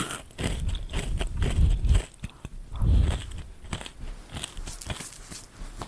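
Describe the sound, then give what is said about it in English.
Loud crunching of a crisp marshmallow snack being chewed, with repeated sharp cracks and heavier bursts of mastication around the second and third seconds, no talking. “They're so crunchy.”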